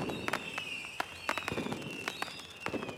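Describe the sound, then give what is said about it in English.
Fourth of July fireworks over a river, watched from a boat's cockpit, popping and crackling in a quick irregular series of sharp bangs, with high whistling tones streaking through. Moderately quiet, no voices. “we coincide our stay for the 4th of July celebrations with ear-splitting dramatic fireworks that we watch from our prime seats in our cockpit on the river.”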